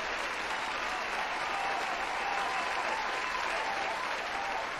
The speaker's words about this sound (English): Y'all know what it is. I gotta get my applause first, y'all.